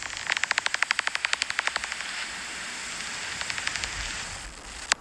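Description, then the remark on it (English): A recording of a brown long-eared bat's echolocation call played from a phone: a rapid, even train of soft dry clicks over steady hiss, fading after two seconds, then a shorter quieter burst of clicks and one sharp final tick. “This is a brown long-eared bat.”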